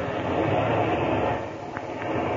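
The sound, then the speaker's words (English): A steady, droning small-plane engine roars loudly, then its rumble eases and drops in level partway through as the pilot throttles the engine back, settling into a lower, quieter hum. “All right. I'm throttling the engine now.”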